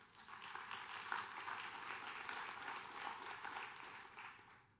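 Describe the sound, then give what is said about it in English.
Sustained applause from a large church audience in North Carolina, a dense wash of many hands clapping at once that swells briefly and then tapers off slightly toward the end. “Now you clapped for that.”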